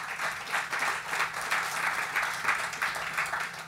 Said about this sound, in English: That's not happy clapping. That's agreement with concern.